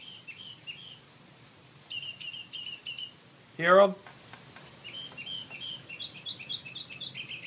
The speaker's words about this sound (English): Doing every bird call. Doesn't shut up. 3 in the morning. Moron. So see, there you go. That was actually recorded right out in my yard.